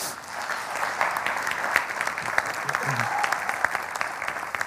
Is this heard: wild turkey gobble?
no